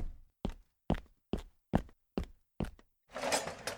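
Seven steady, evenly spaced knocks on a door, loud, followed by a short rush of noisy rumble as the knocking ends.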